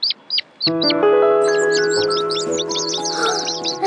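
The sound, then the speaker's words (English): Shrill, rapid chirps from baby birds, a few separate peeps at first and then a busy overlapping chatter, over a steady, sustained musical tone. “Wonderful singing. I think they want to hear you sing. Like a bird?”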